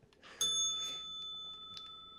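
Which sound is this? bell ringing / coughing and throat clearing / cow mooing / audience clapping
bell ringing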